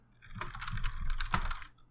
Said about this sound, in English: I'm going to make some typing noises. This is either because I'm telling someone about their role or because I'm making typing noises to trick you.